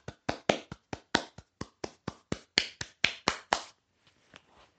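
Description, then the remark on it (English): A short burst of applause for the scientists: roughly seventeen sharp, crisp hand claps in a quick, slightly uneven rhythm, then they stop and only a few faint taps trail off. No one speaks. “So yeah, a round of applause for the scientists.”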